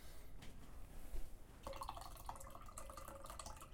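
The rest of the liquid pours out of a can in a steady splashing, gurgling stream, moderately loud, turning brighter and more broken partway through as it spatters down. The can has gelatinous chunks inside. No one speaks.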